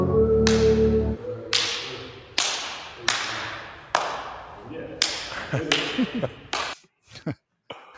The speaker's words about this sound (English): Let's slap hands.